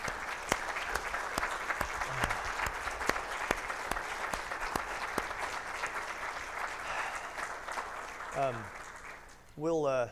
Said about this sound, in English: And man, we love you so much. We love you guys. So y'all clap for him. I mean, come on.